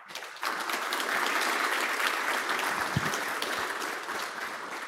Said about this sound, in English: So let's give a round of applause for Craig and Pete.